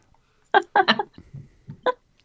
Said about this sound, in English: A small bird, but not a small. I don't know why that made me laugh so hard. Because he really did a small burp. That's why.